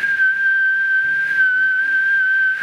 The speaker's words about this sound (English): The Green Arrow flashes another shaft through the window. The arrow point is fitted with a shrill whistle.